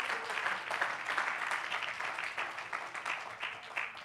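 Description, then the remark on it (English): An audience claps their hands in a dense, continuous wash of overlapping claps, steady and fairly loud for about four seconds, with no voices standing out. “Oh, clap your hands and love him.”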